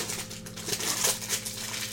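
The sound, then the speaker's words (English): Crinkly plastic protein bar wrapper being opened, rustling and crackling for about two seconds, a steady run of sharp little crackles with a few louder crinkles, fairly quiet with no talking over it. “Guys, I'm opening a protein bar.”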